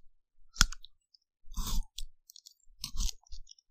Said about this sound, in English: What's sweet and crunchy? Pocky. Yes! Yes!